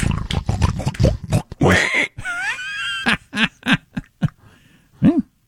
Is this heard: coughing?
no